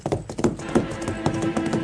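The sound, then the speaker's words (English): A horse's hooves pound in a quick, uneven rhythm, a handful of heavy thuds as the horse, startled by the report of a gunshot, bolts and breaks into a dead run, with a faint tonal hum underneath. “with the report, Gene's horse bounded as if shot from a gun and broke into a dead run”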